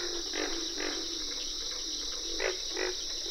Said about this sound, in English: You can distinguish the treble notes of cricket frogs and the distinctive katuk-katuk calls of carpenter frogs. Lang Elliott and Ted Mack recorded this frog concert for ….